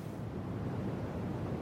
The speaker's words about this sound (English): And now this is brown noise.